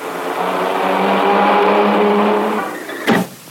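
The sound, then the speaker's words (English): A car engine roars loudly and steadily as the vehicle speeds by, its hum holding strong before dropping away, then a sudden sharp thump near the end as the car knocks down Willy Weasel. “Willy has been knocked down by a car!”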